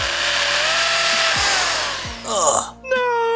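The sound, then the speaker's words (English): A power drill whirs steadily, its motor whining and grinding with a few low knocks, then revs and shifts pitch before ending in a thinner high-pitched spin; a drilling sound in a video game, heard on a dark screen as the player tests the program on the reprogrammed sex robot Fisto. “If players decide to do so, the screen will go dark and a drilling sound can be heard.”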